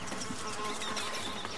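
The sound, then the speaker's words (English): A steady, whining insect buzz of mosquitoes in the jungles of Vietnam fills the whole stretch, continuous, with several thin tones overlapping and no voices present. “And in the jungles of Vietnam, where Tim was fighting, mosquitoes were everywhere.”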